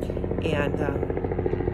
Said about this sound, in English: And we have a helicopter going over. I told you, this is unedited. This is real as it gets. We'll just wait for that to pass for a second.